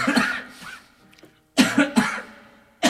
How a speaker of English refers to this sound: This is real. Usually it's for show, that coughing thing.